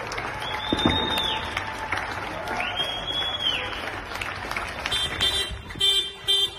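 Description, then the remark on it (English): Steady outdoor applause and scattered clapping from many people clapping for carers, mixed with cheering and a couple of long, rising-and-falling whistle or horn tones cutting through the crowd noise. “And as we all clap for our carers, that marks the end of our One CHS episode of the Ed Podcast.”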